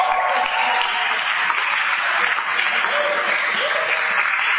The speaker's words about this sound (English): Give him a clap.